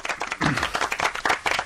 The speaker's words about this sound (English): Round of applause for Professor Hal!